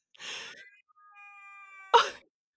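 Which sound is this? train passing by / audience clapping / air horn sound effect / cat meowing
cat meowing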